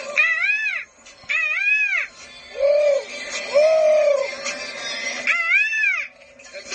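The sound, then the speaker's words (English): A person's voice imitates a morning bird call, repeating loud, rising-and-falling warbling cries in several quick phrases over about seven seconds, with no other talking. “Let's do the bird call, morning bird call.”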